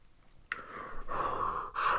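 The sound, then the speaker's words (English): A voice imitates hollow, raspy breathing as if through a breathing tube: three drawn-out, hissing breaths in quick succession, loud, with no talking. “Sounds like he was in a breathing tube. That is what it is, breathing tube.”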